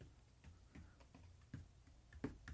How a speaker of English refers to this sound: I'm tapping the desk like I'm putting dots on a piece of page, like a paper.